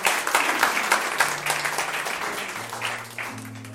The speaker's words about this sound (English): Oh yes, you can clap yourself.